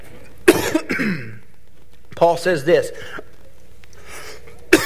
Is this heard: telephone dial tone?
no